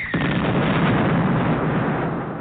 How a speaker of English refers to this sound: Bang! Soon go the fireworks.